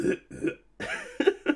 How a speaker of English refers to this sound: And I gotta cough.